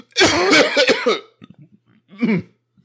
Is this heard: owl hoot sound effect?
no